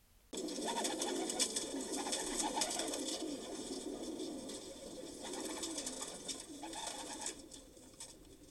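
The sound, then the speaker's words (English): A flock of pigeons coos steadily, their soft, throaty calls overlapping into a continuous murmur that starts abruptly and holds at an even level throughout, with no one talking. “While the use of carrier pigeons for mass communication has long been over, this was the final blow to this dead media, as the 800 pigeons used was the last system with a large number of pigeons used for communication.”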